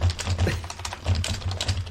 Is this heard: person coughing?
no